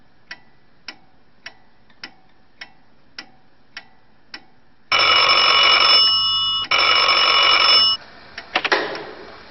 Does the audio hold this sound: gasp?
no